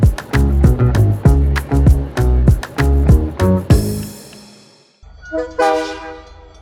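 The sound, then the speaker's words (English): A train rolling off from Toronto to Ottawa moves along with a steady, rhythmic clatter of wheels over rail joints, then the clacking gives way to a loud, sustained horn sounding twice. No one speaks. “As the train rolls off from Toronto to Ottawa,”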